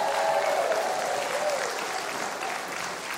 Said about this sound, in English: And welcome back. How about a big hand of applause for … tonight?